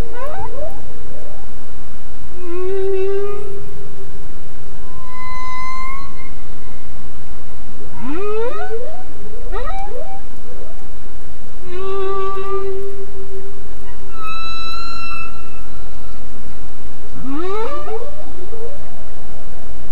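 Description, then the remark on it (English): Male humpback whale song: long, loud moans and rising whoops with bright harmonics, repeated in phrases over a constant hissing underwater wash, with no voices. “And these songs that the male humpback whales sing are long.”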